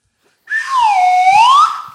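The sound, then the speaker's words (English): A slide whistle built from a red snapper turtle shell glides in one long sweep, starting high, dipping low and smoothly rising again, loud with an airy breathiness and no talking. “That there's I built that slide whistle out of a dang, what you do is a red snapper turtle shell, that you can make about four or five slide whistles out of one red snapper shot.”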